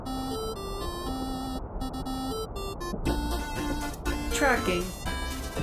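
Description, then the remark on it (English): A computer tracking sound, as a computer tries to locate Mrs. Claus, plays Jingle Bells as a string of bright, stepped electronic notes, steady and fairly loud over a busy, noisy background for several seconds. “I really wish we would have changed that from jingle bells to, you know, some sort of tracking error. Sound.”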